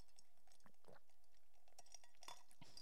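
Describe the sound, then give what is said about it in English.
Quiet sounds of coffee being sipped from a mug, with a few faint ceramic clinks and soft mouth noises scattered over a few seconds. No one speaks. “I'm going to take another sip because this piece of the trial that I'm going to be reading out next is very lengthy, so I need a sip of coffee.”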